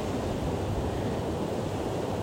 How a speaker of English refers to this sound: Take your awareness into your hips and allow the sounds of the waves to wash over your hip and pelvic area. Feel the waves coming in, washing away